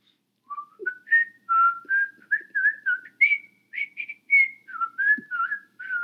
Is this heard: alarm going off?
no